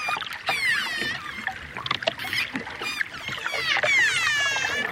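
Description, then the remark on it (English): Underwater dolphin sounds: rapid bursts of echolocation clicks, used by the dolphins to map their underwater surroundings, mixed with high, rising and falling whistles that sweep up and down. Fairly loud and continuous throughout, with no voices. “They use sonar, or echolocation, to map their underwater world.”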